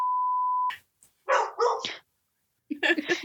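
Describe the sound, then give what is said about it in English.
A steady electronic beep cuts off, then a dog in a room of a home barks loudly, two sharp barks in quick succession followed by another rough bark or yelp a moment later. “I did not know my dog was in the room.”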